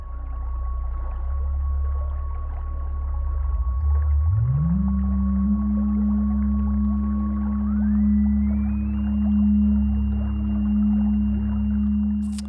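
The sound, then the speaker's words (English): A synthesized, whale-like electronic tone, made by someone turning dials to manipulate sound, drones steadily, its pitch sliding upward partway through, with a higher whistling line gliding up later; no one speaks. “So here's me messing around with the dials.”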